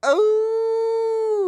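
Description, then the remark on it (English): A person on a radio show lets out a single sustained howl, imitating a wolf, rising briefly at the start then holding a steady, loud, tonal note for over a second. “Oh, there's people that that's so funny, because like Wolfman Jack used to howl, and I'm not even the first person to howl.”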